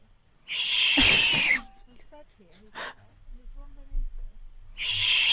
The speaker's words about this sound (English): There's a this vine of like a gopher or whatever screams. So this is the vine. There's a this is the famous vine that Alex is alluding to.